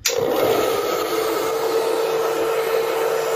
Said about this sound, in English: I'm going to use the blow dryer because I want it to stick.